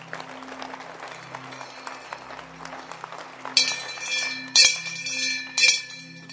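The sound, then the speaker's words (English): A crowd claps steadily, then a bright metallic bell rings out loudly three times in quick bursts over the applause, each ring cutting through the clapping. The bell is rung as the signal for the clapping to stop. “When I ring the bell, you must stop clapping. So clap your hands.”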